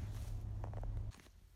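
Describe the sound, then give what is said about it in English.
Several crunchy footsteps stomp in snow over a steady low rumble that cuts off abruptly, followed by a couple of softer crunching steps. “If I can go stomping in the snow, then I can hear crunch, crunch, crunch.”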